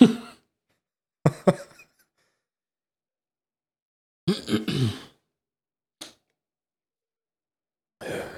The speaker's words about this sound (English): shuffling around beers and sniffling and snotting into the microphone